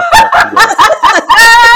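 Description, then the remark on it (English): Someone imitates the wheezy, asthmatic breathing of the character Bella from Twilight: about six loud, strained, raspy gasps in quick succession, the last one stretched into a longer, higher wheeze. “Bella had asthma, and she needed an inhaler because her breathing was...”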